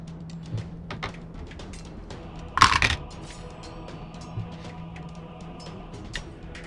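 A short, sharp clatter of dice rolling in a dice box to make a roll to hit, a quick rattling burst with a few faint clicks before and after against a quiet background hum.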